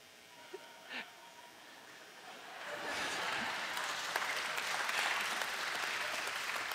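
After a few quiet seconds with a brief faint sound, a crowd bursts into sustained applause, many hands clapping in a dense, steady wash of crackly sharp claps that holds at a fairly loud level.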